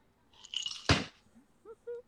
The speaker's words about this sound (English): I dropped an ice cube.